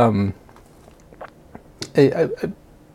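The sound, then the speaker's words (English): Crunching of ice from a drink between teeth, a few crisp, scattered bites rising to a sharper crunch, with brief voiced sounds before and after. “I'm gonna crunch ice too.”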